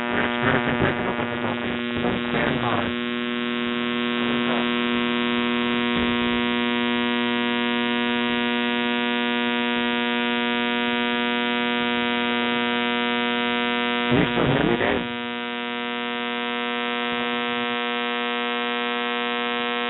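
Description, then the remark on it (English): A steady electrical mains hum drones loudly through the whole recording, its buzzing harmonics stacked evenly, with brief crackly bursts of static near the start and again around two-thirds through. “we're getting some sort of interference.”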